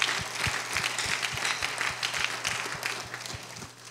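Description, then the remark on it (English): An audience applauds steadily for several seconds, a dense wash of many hands clapping at once, with a regular low thumping pulse running beneath the clapping throughout. “Let's give him a hand clap for that answer.”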